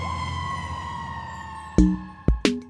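A fire truck siren holds a steady droning tone, then three short, loud horn blasts burst out close together near the end. No one speaks.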